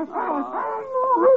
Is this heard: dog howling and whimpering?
yes